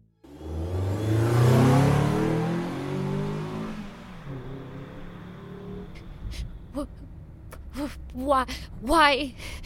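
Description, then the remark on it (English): A car engine revs hard as the car is ground into gear and propelled forward, loud for a few seconds before settling into a lower hum. A person then gasps and speaks over the running engine. “Her watcher grinds the car into gear and propels it forward, embracing the moment.”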